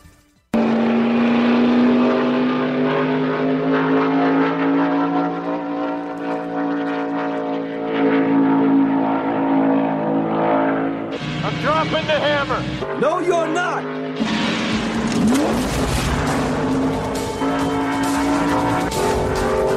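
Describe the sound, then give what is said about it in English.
A stock race car's engine roars loudly and steadily on the track at Wilkesboro during an opening test run, then revs climb in rising, straining bursts as the driver floors it and accelerates hard. “And he's just testing out the car to show if he's got the guts.”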